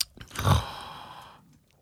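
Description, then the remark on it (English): A single slurping sip of Bud Light Lemon Tea, a fizzy lemon tea beer: a short wet gulp followed by a second or so of soft fizzy hiss that fades out, with no talking. “All right, let's give it a sip, guys.”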